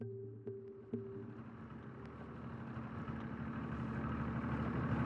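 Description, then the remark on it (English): A low, steady boat motor idles with a constant rumbling hum as the boat comes up ashore at Felix Cove, a few faint clicks early on, and the drone swelling slightly toward the end; no one speaks. “Well, we're in the boat and we're coming up ashore at Felix Cove.”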